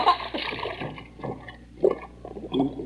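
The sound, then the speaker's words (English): A turtle slides off the bank and splashes into an icy brook: rough scraping and sloshing water, then a couple of brief splashy bursts near the end, moderately loud with no talking. “if I were to give you a little push, you'd slide right into the water.”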